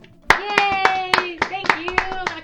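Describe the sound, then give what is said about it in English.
A single pair of hands claps sharply about nine times at a brisk, steady pace, with a sustained, voice-like tone humming underneath the claps throughout. “Let's give Laura a standing ovation.”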